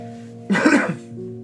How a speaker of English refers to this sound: Pardon me, that's not a viral cough. That is a smoker's cough.